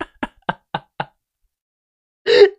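A hand strikes a table five times in a quick, even, sharp rhythm, then after a short pause lands one heavier, longer slam. No one speaks.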